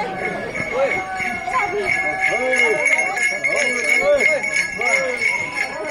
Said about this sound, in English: On a cool autumn Sunday, a group of Hopi activists with bells tied to their ankles run more than 70 miles across the reservation.